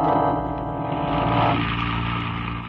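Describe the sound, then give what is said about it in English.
A car engine hums steadily as the vehicle drives down Clay Street, a continuous low rumble whose tone shifts slightly partway through, with no voices. “He wheeled the car down Clay Street, and we followed.”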